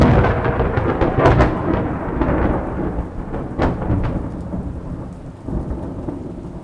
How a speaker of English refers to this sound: How does he end it? He ends it screaming. That lightning strike.